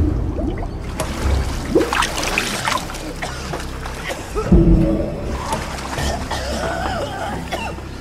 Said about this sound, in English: Pulls the plug on this drain, and all the water starts to drain out of the tub.